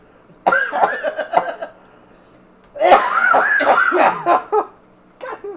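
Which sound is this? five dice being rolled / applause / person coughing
person coughing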